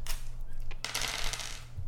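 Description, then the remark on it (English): Dice, rolled for a game character's stats, clatter across a table in a quick burst of rattling clicks, a brief tap first and then a longer tumbling rattle that fades, over a low steady hum. “Maybe we roll for her stats.”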